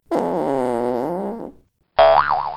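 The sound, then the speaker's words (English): Two loud cartoon boing sound effects with a wobbling, springy pitch. The first lasts over a second, then a short silence, then a second quicker, vibrating boing. No one speaks. “And I'm best known for talking about Dynasty League football on a podcast with boner sounders and fart noises.”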